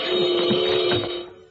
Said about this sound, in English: I yanked at some wires and stopped the awful racket. What set it off that time, Browning? Well, Mr. Lerner, this super special burglar alarm is awfully sensitive. Dust spots in front of the photoelectric eye must have tripped the alarm.